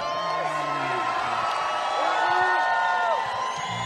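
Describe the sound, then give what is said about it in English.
A large rally crowd in Prescott Valley, Arizona, cheers and whoops as gubernatorial candidate Carrie Lake is introduced, a steady, loud roar with overlapping shouts and rising yells swelling briefly before easing slightly at the end. “Wow, this crowd.”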